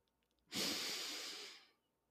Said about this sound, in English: And so let's create some space together. And we can do that by taking a few deep breaths.